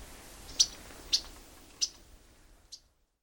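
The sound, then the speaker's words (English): Four short, sharp chip notes from a yellow-rumped warbler, spaced irregularly about half a second apart, high-pitched and fairly loud over a soft background hiss, with the last one fainter. “Particularly along the Atlantic coast, birders, in a day, might find butterbutts in the hundreds, abundance unlike any wintering warbler in North America.”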